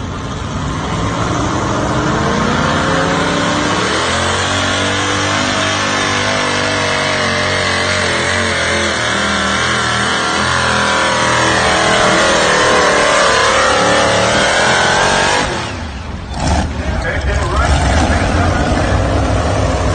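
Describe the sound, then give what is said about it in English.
A tractor engine runs loudly for the whole stretch, its pitch rising and falling as it revs under load while driving, with a brief dip near the end before roaring back. “So, Mike, let's sit back and enjoy Joe Eater driving your tractor, because not many people get to say that.”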